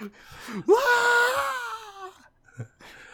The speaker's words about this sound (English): Ah! Wilhelm scream.